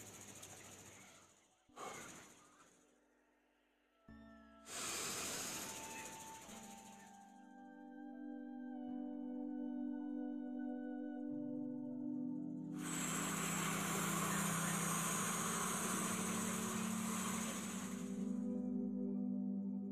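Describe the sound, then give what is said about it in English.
A demonstration of a breathing technique: a few quick, airy breaths give way to a long, loud rushing breath filling the lungs fully, pausing before another sustained exhale emptying them, all over a steady low humming tone. “So for example, I'll show you how I would do the actual breathing.”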